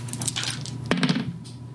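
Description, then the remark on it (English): Dice clatter across a tabletop during a game roll in a quick burst of hard little clicks and knocks, fairly loud, then settle on a 6, with no one speaking. “Okay, dice, you and I have had some arguments tonight. Please.”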